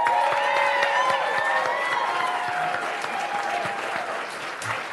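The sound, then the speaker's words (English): An excited crowd at a city gathering, before an invocation, applauds steadily for several seconds, dense clapping mixed with whoops and cheering voices, staying loud throughout without a break. “So let's give a hand for these people here.”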